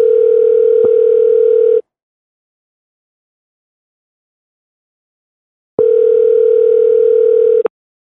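A telephone tone from placing a call: two steady, mid-pitched tone bursts, each about two seconds long, with a long silent gap between them. No voices.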